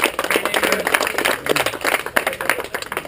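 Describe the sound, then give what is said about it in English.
A crowd applauds the competitors in the first year of a mountain bike event, steadily, many hands clapping together in a dense, crackling wash that holds at an even, fairly loud level for the whole few seconds. “This is the first year, so a huge round of applause to each of you for being the first ever mountain biker.”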